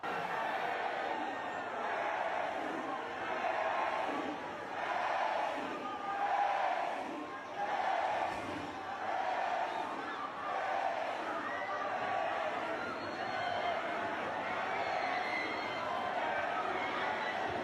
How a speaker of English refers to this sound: he just goes to get dinner at a restaurant, and the crowds are covering him. And here's his video. Here's what the scene looked like as he entered the restaurant.